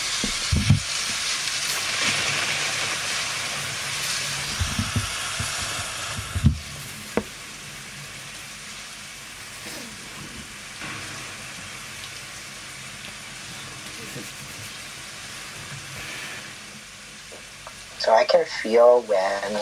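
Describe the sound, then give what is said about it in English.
A steady, even hiss of rain sounds played from a relaxing rain sounds app runs unbroken throughout, soft and enveloping, with a few faint thumps along the way and a brief voice near the end. “When I was finally set up, I realized I was going to have to turn to my relaxing rain sounds app, which I'd been using to sleep when coronavirus existential dread was keeping me awake.”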